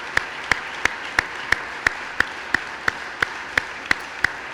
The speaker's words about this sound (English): I mean, that was our applause for our great God who, you know, lives acknowledges our faith, our deep faith. And so we praise God for that.